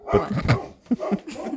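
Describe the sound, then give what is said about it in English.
The speaker's dog barks several times in quick, uneven bursts, moderately loud, with short pauses between the yaps and no one talking over them. “My dog said, shut the fuck up.”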